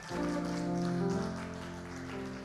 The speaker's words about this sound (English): Let's stand up and give the Lord a big clap for what he's doing.